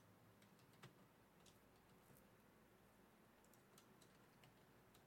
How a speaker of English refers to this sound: Got my fingers off the keyboard. I'm trying to type.